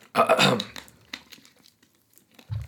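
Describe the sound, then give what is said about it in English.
A loud crinkle and rustle, like a plastic bottle being squeezed, as someone takes a swig of water, followed by a few quiet gulps and clicks, then a soft low thump at the end. No one speaks. “I'm going to take a swig of water.”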